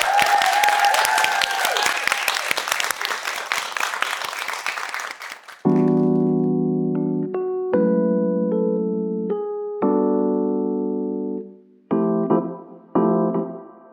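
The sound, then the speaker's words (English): An audience applauds steadily for two guests for about five seconds, a dense wash of clapping. Then it gives way to loud, sustained musical chords struck one after another, each fading before the next. “Can you just give both a round of applause?”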